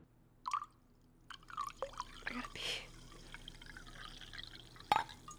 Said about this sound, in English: There you go. That was nice. That's very nice. That was good. Flowing water. Flowing water is nice.